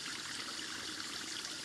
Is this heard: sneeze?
no